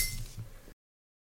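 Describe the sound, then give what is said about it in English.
A single quick clink of wine glasses in a toast, with a brief bright ring that fades within a second, fairly quiet, with no talking. “Drink wine. And cheers. Cheers.”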